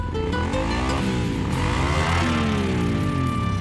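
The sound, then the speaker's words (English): A motorcycle engine revs loudly, its pitch climbing and dropping in repeated surges over a steady rumbling idle, with no voices present. “Don't horse around when it comes to motorcycle safety.”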